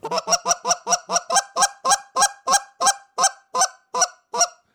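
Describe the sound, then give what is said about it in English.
A goose call blown in a rapid, steady run of about seventeen short, sharp clucks and a quick spit, loud, used to pick up geese, with no one talking. “if I need to hit them with the flag and to pick up those geese, I'll hit that quick spit or quick clucks in conjunction with each other.”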